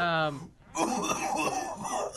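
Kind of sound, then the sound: human body sound, coughing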